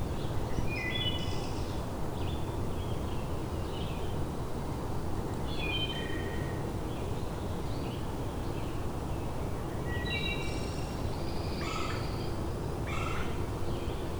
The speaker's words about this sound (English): There's a red-bellied woodpecker.